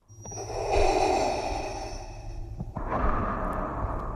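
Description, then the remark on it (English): Darth Vader's heavy, mechanical respirator breathing, a sound trademarked by Lucasfilm: one long hissing inhale followed by a rasping exhale, loud, with a low hum underneath and no voices. “Darth Vader's breathing is trademarked by Lucasfilm, now a subsidiary of Disney.”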